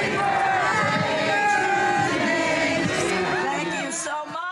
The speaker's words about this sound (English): Demonstrators sang to her as she was taken outside.